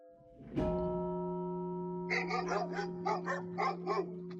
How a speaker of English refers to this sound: Shut up, you damn dogs. Whose dogs are these?